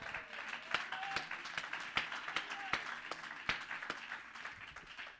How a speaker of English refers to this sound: Could you clap your hands?